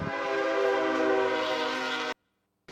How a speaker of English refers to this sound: We're gonna let the train come by here again. We're out here on the patio at K Street Seafood Station. We'll see what's coming through. So bear with us.